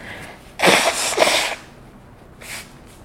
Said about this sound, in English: I literally have to blow my nose because I'm so sorry. It's mucus.